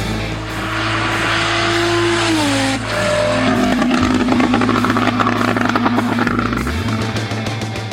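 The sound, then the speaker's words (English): An older Porsche 911 Turbo engine revs loudly, its pitch climbing and falling through several throttle blips, with a steady throaty rumble underneath and a rising whine near the end. “that is Steve Kraft, his Porsche 911 Turbo. That's an older car sound.”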